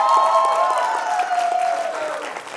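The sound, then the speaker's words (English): A church audience gives a steady round of applause for a woman baptized the night before, dense clapping holding loud for under three seconds, with a sustained tonal sound gliding gently downward beneath it. “But you guys give her one more round of applause, please.”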